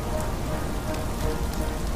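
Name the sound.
heavy rain falling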